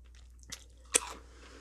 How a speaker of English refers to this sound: Sorry. Chew first.